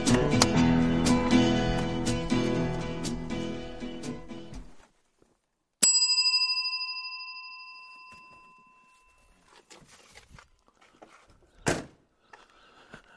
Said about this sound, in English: I had to walk over to the road track just to do that so you could have your starting bell.